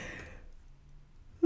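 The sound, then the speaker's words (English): A long, breathy yawn-like exhale, drawn out and fairly quiet, ending in a sudden voiced, tonal sound. Alone, with no talking. “And some of them is also yawning. So that's also, I feel that is part of why I'm doing that.”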